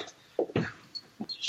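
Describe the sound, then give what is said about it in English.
An office door is pushed and forced shut with a few short scraping and bumping noises, ending in a brighter rasping scrape, with no talking. “I'm trying to close the door.”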